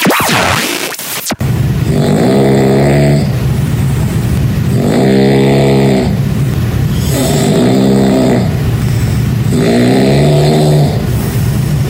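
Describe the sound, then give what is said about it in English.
Loud, heavy snoring of a sleeping person, recorded at night, four long rumbling breaths repeating at a steady rhythm with a constant low drone underneath and no talking. “Let's listen to you snoring and waking me up.”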